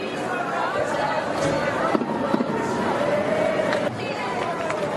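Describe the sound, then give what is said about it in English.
A loud stadium crowd at a women's football match involving Barcelona chants and sings about Barcelona player Kira Walsh in a steady, sustained roar, voices blending into a thick wall of sound with a couple of brief sharp knocks in the middle. “If not, we're getting serenaded.”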